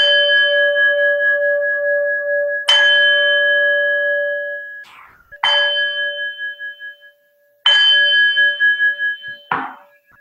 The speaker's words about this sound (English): But for me to do that, I'll use my singing bowl and chime you in.